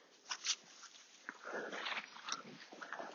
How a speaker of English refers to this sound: Oh, and Wolfie's managed to chase the dog off. The dog's doing a wee. And now coming back, the Labrador's just weed against the bush.